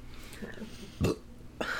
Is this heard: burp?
yes